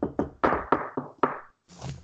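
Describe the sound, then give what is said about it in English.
Six solid knuckle knocks on wood in a quick, slightly uneven series, each with a short hollow ring, followed by a soft breathy rustle. “I'm surprised, and I'm knocking on all the wood.”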